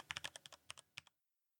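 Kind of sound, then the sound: household object, computer keyboard typing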